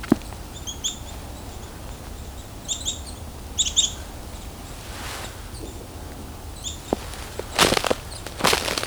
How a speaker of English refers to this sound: We got some black-capped chickadees.